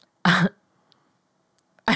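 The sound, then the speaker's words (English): A loud, abrupt sneeze bursts out, then quiet with a few faint clicks before another sharp burst of the same kind begins right at the end. “Bless you.”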